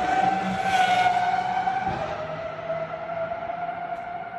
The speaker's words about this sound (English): Yeah. High-pitched. That's one car. That's one car by itself. It's just insane. Where is that high pitch sound? It's a big V12. I mean, V12s are very high-pitched.